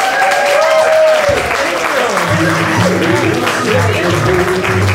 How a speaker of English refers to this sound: I'm married to Rebecca Romijn. Give me a round of applause for Jerry O'Connell!